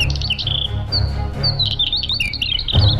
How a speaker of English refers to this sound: But we're focusing on another amazing tiny traveler as today's featured feathered friend, a 6-inch long bird that even outdistances the blackpoll. The bird is the northern wheatear.